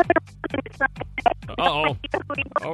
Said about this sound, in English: Oh, your phone's freaking out.